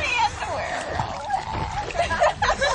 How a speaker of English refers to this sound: Meantime, someone else jumps into the water.